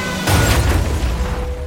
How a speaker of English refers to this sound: They hit the truck, head on.